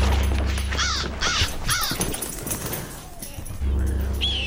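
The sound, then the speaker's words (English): A bird held in a dog's mouth squawks three times in quick, harsh succession, loud, over a steady low rumble, followed by quieter background noise. “Drop that bird, young lady. Drop it.”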